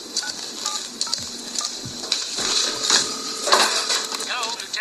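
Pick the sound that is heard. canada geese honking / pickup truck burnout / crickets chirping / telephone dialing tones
telephone dialing tones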